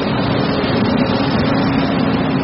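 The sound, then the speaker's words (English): A steady, loud engine rumble with a low droning hum from big diesel trucks that carry cargo containers at the Port of Long Beach, California, continuous with no pauses and no voices. “Like other big California ports, L.A., Oakland, San Diego, it's filled with fleets of big, loud diesel trucks.”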